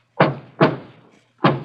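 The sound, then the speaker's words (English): Three solid knocks on a wall, two in quick succession and then a third after a short pause, each a dull, resonant thud with no talking; a person knocks back on the wall in reply to someone on the other side. “Now, Ben, you listen, and Betty will knock back.”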